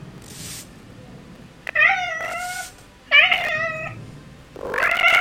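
A cat yowls three times in long, wavering, drawn-out cries, loud, with brief quiet gaps between each caterwaul and no one speaking.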